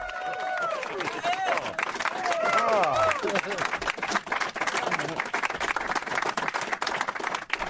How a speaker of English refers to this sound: Spontaneous applause is always the best. I love that.